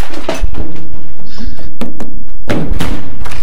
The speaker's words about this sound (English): Why did you lock the door?